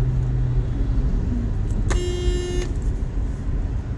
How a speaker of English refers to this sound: I'm going 55! Now enjoy the little small horn.